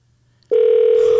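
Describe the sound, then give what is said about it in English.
A steady electronic phone tone switches on abruptly after a brief quiet stretch and holds at a single pitch, loud, as a phone call to a father dials out, likely over Bluetooth. “He's in the middle of work. I doubt if he answers.”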